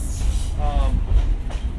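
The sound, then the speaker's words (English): A train rolls along the rails back into the depot with a steady, loud low rumble, and a brief metallic squeal rises midway through before the heavy rolling noise carries on. “Well, folks, we're going to be coming back into the depot. I really hope you've had a good ride.”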